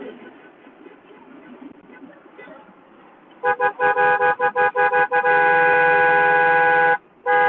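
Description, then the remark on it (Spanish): Car horns honk repeatedly as a large caravan of cars departs, starting with rapid short blasts and then merging into long sustained tones, several vehicles sounding together over a background of traffic. “Vamos ahora a seguir la siguen los autos saliendo.”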